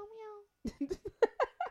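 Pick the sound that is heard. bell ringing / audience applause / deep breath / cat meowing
cat meowing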